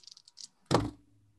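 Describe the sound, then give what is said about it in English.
Dice clatter in a quick series of light, crisp rattles, then land with one loud clack and thud that fades quickly into a faint low hum. “You can hear round you 6. Shaking the dice.”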